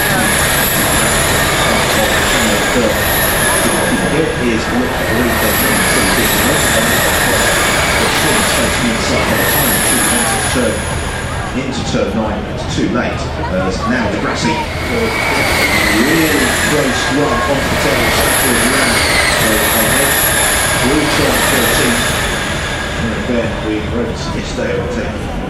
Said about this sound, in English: There it is, the sound of Formula E. That high-pitched whistle and whine and swoosh that seems more familiar to video gamers playing F-Zero or Wipeout, perhaps, than motor racing. And that sound largely drowned out by the helicopters above.